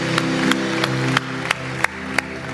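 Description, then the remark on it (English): An audience at a Foundations Church service applauds three individuals who raised their hands, in a steady, dense wash of many clapping hands, punctuated by sharper accents about every third of a second, with low sustained musical tones underneath and no talking. “Can we give these three individuals that raised their hand a huge round of applause?”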